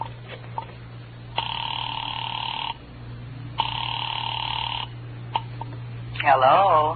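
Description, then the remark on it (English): Two long, steady ring tones come through a thin, tinny telephone line with a pause between them, then a voice starts speaking at the end as someone picks up. “I dialed Bradshaw 7711 and waited.”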